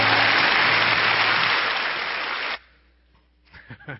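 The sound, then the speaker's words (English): Loud, dense applause from a crowd fills the first two and a half seconds, then cuts off abruptly into near quiet, followed by a few faint voice-like sounds. “Give them an applause.”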